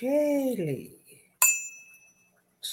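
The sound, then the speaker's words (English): A voice is followed by a single bright bell ding with a sharp attack and a clear, high ringing tone that fades over about a second before the voice resumes. “Let me ding the bell.”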